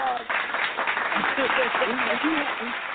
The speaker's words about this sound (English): I got to throw some claps on. I like that monologue.